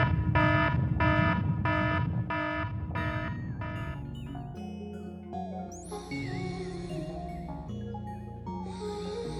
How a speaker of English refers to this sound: The alarm and shit going off.